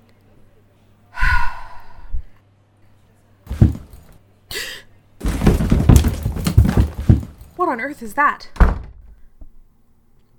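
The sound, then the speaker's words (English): A bookshelf gets knocked around in a library after hours: a loud burst of heavy thuds and clattering lasting a couple of seconds, with a person speaking and gasping before and after. “It sounded like a bookshelf had been knocked around.”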